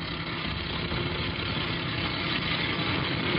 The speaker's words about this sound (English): That's a tape truck, all right.